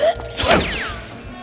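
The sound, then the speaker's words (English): Max sneezes after a flower lands on his nose: a single sharp, noisy sneeze bursts out, followed by a falling, whistling swoosh as the royal wedding rings sail across the room and out the door, fading away, with no talking. “As Max sneezed, the royal wedding rings sailed across the room and out the door.”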